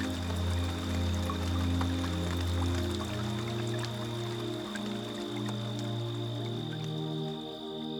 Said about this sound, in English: It's night-night time, said Mama Cat as she drew her kittens near. The wind is picking up a bit. The rain we soon will hear.